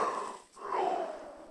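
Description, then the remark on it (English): A drawn-out, breathy yawn in two parts: a brief intake, a short pause, then a longer voiced exhale whose tone slides downward. It is heard on its own, with no speech. “Please forgive me for yawning.”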